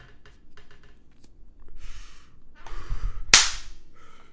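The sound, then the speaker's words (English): A swishing whoosh builds into a single loud, sharp slap of a woman slapping someone, followed by a brief quieter rustle. Faint ticks and clicks come before it, and there is no talking. “She slapped me, and I awoke from my fantasy.”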